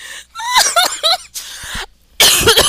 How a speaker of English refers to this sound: Oh, Lord, friend. I ain't mean to make you cough. Get some water.